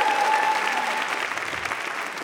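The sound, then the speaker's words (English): An audience at a Moth storytelling event gives a round of applause for being there that evening. Many hands clap at once in a steady, dense, continuous crackling wash that holds its loudness throughout. “Let's get a round of applause just for being here this evening, for making it out.”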